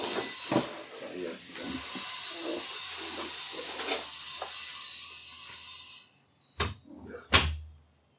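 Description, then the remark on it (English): An angle grinder runs in a driveway as a steady, bright, high-pitched grinding hiss for about six seconds, a voice murmuring faintly beneath it, then cuts off abruptly, followed by two sharp thumps. “Well, people can probably hear the angle grinder in my driveway, so I'm going to close the door.”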